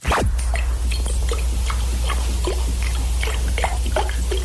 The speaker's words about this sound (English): I prefer water globe. I like the sound of water dripping because it's kind of like when you're in bed at night time, you can hear the rain against the window.